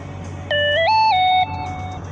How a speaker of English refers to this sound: Lord Almighty, my notifications. I don't care. Go away. Quit. Stop. I don't want any more of these notifications.